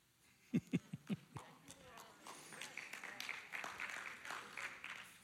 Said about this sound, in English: Well, that got an arousing applause.